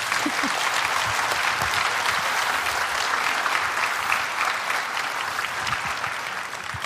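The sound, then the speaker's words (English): An audience at a baptism breaks into steady applause for the families, many hands clapping in a dense, even wash of sound that holds strong throughout and eases slightly near the end. “I would just ask that we give all these families a round of applause for what they're going to do with these kids.”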